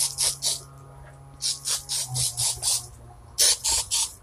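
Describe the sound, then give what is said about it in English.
A spray hisses in a quick run of short bursts, about ten puffs in loose rhythmic clusters, fairly loud over a low steady hum, with no one speaking. “Spray it again.”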